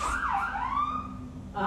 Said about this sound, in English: They were honking. That was the engine. And the police. Oh. Everybody's honking at Mom. Pretty sure they're going up to their usual house up the street, if I had to guess.